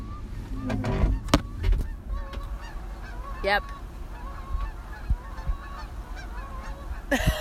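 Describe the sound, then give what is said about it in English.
A large flock of about 10,000 geese honks continuously, a dense overlapping chorus of calls with a few louder honks standing out; one person briefly says a word over the din. “It's about 10,000 geese having a geese reunion.”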